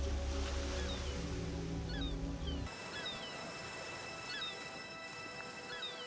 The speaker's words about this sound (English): Now, imagine you are sitting on a beach by the ocean. The ocean is creating peaceful waves to the rhythm of your breathing and surrounding you with white energy.